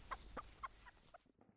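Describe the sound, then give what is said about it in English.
A broody hen sitting on her nest in a hen house on a very hot day clucks in a short series of four or five soft calls, each a brief tonal cluck, fading toward the end against a faint outdoor background. “Henny is still broody. I'm just walking up to the hen house to see her again.”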